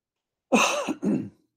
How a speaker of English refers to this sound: Sorry for the coughing this morning.